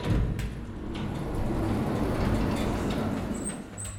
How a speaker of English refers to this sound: What was that? Oh, I think it was the elevator doors.